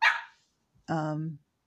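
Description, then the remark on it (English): A male dog barks twice: a short, harsh burst, then after a brief pause a longer, more tonal bark with a whining edge. “So my dog is having some issues with his brother.”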